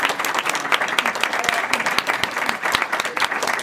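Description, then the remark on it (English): An audience applauds a spot prize winner, whose prize is a Call of Cthulhu coloring book. Dense overlapping claps form a loud, sustained wash of sound, with a few sharper individual claps standing out. “Please, round of applause for our...”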